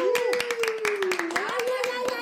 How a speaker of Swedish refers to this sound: En stor applåd för Tilde Fröling!